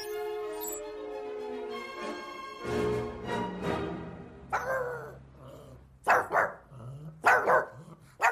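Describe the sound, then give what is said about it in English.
A dog named JB whines in a long, rising high-pitched tone, then breaks into a handful of sharp, loud barks coming in uneven bursts while scratching at a door, with no one talking. “Stop scratching the door.”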